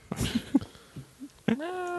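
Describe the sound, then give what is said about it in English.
Players of a tabletop game mimic a cat's meow together in unison: a few short vocal bursts followed by a longer, rising, drawn-out tone, voices overlapping loudly. “Kitty, full kitty. Turn. Meow. Meow.”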